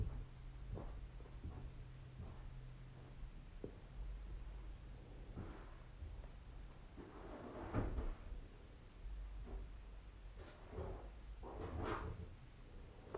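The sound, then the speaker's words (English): A desk drawer is pulled open and pushed shut several times, with irregular wooden thumps and scraping slides over a steady low hum. “One drawer a day, please.”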